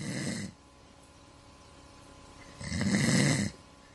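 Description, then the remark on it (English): Heavy, loud human snoring: one rasping snore ends just as the sound begins, then a quiet pause, then another long, rumbling snore around three seconds in before quiet returns. “The kids used to moan and groan about me snoring, particularly at night.”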